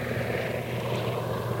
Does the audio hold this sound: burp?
no